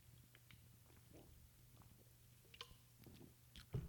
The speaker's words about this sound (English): Give me a sip of this Bud Light Lime. One second.